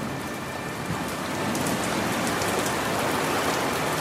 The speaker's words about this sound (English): The rain comes down over Omi.